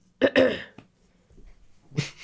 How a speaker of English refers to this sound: You need a cough drop? Yes, a sore throat.